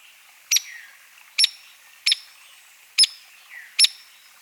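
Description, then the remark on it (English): A hairy woodpecker gives five sharp, clear peek calls, spaced roughly a second apart. Each note is brief and piercing, with faint background hiss between them. “Hairy woodpeckers also have a sharp peak that is similar to downy woodpecker.”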